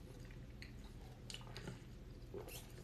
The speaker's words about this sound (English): what are you eating? Sounds delicious. It's like vegan eggs and toast.